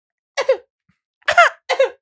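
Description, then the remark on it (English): A person coughs in three short, harsh bursts, the first two close together and the last following after a brief pause, fairly loud with no talking. “Like I just got the trend cough.”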